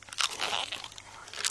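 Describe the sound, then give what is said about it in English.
Loud crunching and munching of a buffalo eating grass, a rapid run of crisp bites and chewing with bursts of crackle, heard alone with no voices. “With a loud crunch, munch, crunch, Buffalo began to eat.”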